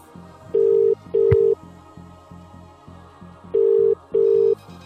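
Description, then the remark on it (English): A telephone ringing tone heard down the line as a call is placed to a contest winner, two slow, steady double-buzz rings separated by a pause, sounding clearly over a quiet, rhythmic music bed. “Is it ringing? Yeah, it's slow. It's ringing.”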